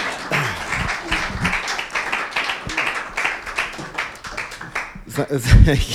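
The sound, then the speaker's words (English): An audience claps steadily for several seconds as a group of people sits down, a dense, crackling applause with voices murmuring and a few louder calls rising near the end. “Give them a round of applause as they're sitting there.”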